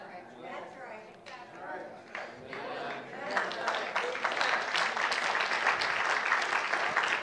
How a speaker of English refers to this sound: Yeah, I thought the clap would come sooner, but okay. You're going, do I clap or do I not clap? Okay. Here's what we know. Soon clap. Come on, church, soon clap. There we go.